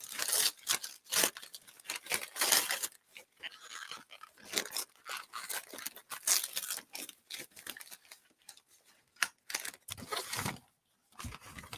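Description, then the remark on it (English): Ripping and crinkling of wrapping paper being torn off a gift containing a crafter's square painting set during a live stream, in repeated uneven bursts with short pauses between pulls. “Trying to get every piece of paper off here is a little bit fun.”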